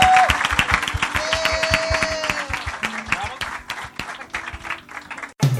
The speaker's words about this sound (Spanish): ¿Por qué no le da un fuerte aplauso a nuestro Dios? Porque Él es bueno y Él es fiel.